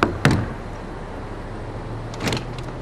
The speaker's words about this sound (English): and then there is a knock at the door.